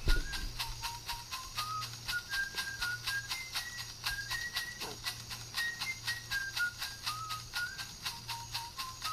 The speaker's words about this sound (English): They were all made by these trippers in the Amazon. And they're all using, like, rattles and shit, and they're whistling. Like, listen to this.